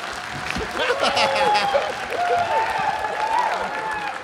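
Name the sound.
audience round of applause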